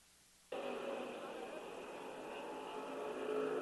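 A loud, steady roar of racing engines cuts in abruptly and holds, a dense mechanical drone of stock cars speeding single file down the backstretch at Darlington Raceway, swelling slightly toward the end.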